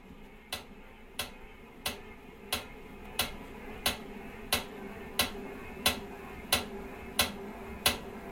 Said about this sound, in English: So now if I start pedaling, this is what the bike sounds like.